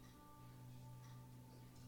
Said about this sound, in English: The clock is running in a continual motion forward. Time. Distraction is ticking. Don't let the ticking of the clock distract you from the time in front of you.